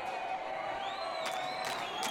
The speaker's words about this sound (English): The crowd is really getting into it.